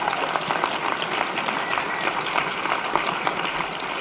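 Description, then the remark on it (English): A crowd claps steadily, a dense, even wash of many hands with no single claps standing out, holding at a constant level throughout without any talking. “One more round of applause for me, y'all.”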